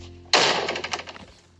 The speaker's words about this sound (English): Slam that door.